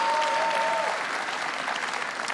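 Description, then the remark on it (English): A church audience breaks into steady, dense applause to encourage guests for being there, a broad wash of many hands clapping at an even level throughout. A thin, high feedback-like tone rings briefly at the start before fading. “Church, can we just kind of give them a round of applause, encourage them for being here?”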